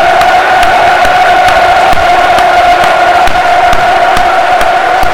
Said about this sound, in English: There's a great round of applause all around the stadium. It's going to be really heartening to see that.